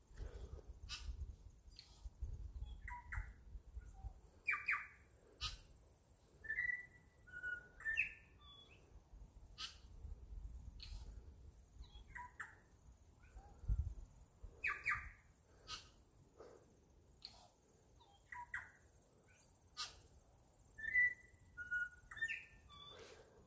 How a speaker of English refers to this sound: Just recording a little voice note, which has got a New Zealand tui in the background.